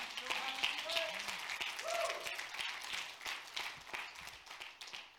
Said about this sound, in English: Clap your hands. That's a miracle.